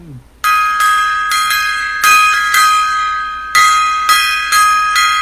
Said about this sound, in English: All right, little gong time there.